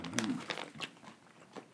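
Someone chews a piece of tender beef jerky with a few soft, irregular crunching bites and wet mouth sounds, fairly quiet, with no talking.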